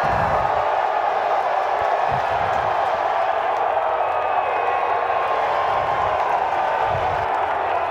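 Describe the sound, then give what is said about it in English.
A large crowd at a golf major championship roars steadily throughout, celebrating the oldest champion in the history of golf at a major. It is a dense wash of cheering and whooping that stays loud and sustained without pause, with scattered clapping blended into the noise. “That crowd, my God, it was like they've been saving up for a year because, well, they've been saving up for a year.”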